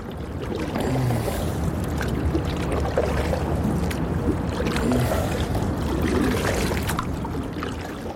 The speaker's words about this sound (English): The boat went from the M50 westwards towards the Shannon, while the canoe, which I was paddling, went eastwards from the M50 to the Liffey.